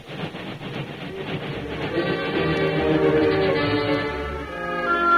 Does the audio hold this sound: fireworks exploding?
no